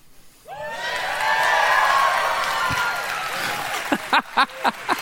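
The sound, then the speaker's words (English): A large crowd stands and erupts into loud, sustained cheering and yelling for a picture of Chick-fil-A after a brief quiet moment, with scattered high whoops and shouts punching through toward the end. “If you love the picture of what I'm about to show, because this is what everybody in the South loves, then I want you to stand to your feet and cheer.”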